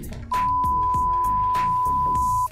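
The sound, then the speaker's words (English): A single long, steady high-pitched censor bleep runs for about two seconds, covering a swear word in a loud stretch of talking voices that stay audible underneath it. “Well, that's just one long fucking. You can't. Beep.”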